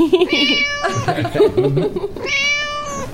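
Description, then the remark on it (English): A kitten lets out two drawn-out, high-pitched meows, one at the start and one near the end, with a person talking briefly in between, all fairly loud. “Sorry about that, kitten.”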